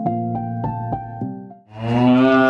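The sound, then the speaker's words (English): A cow moos loudly: a low, pulsing drone that breaks off briefly, then swells into a rougher, breathier bellow. No talking. “You begin to moo, moo, moo all over this farm, moving your body.”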